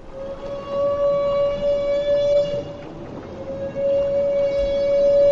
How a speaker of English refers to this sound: Humpback whales make this trumpet sound only when feeding, but why they do it has long been a mystery. Now, physicist Orest Diachuk of Johns Hopkins says the sound may help the humpback size up a school of fish.